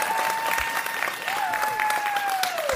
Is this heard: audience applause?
yes